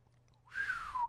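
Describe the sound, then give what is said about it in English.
A single short, breathy whistle attempt by a person whistling in surprise: airy hiss mixed with a thin wavering tone that slides slightly downward, fairly loud, lasting about half a second after a moment of near silence. “I'm trying to whistle.”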